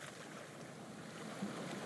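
Steady ocean water sloshes and laps against the side of a ferry boat moving across the sea, a continuous broad wash with faint low engine rumble underneath and no voices.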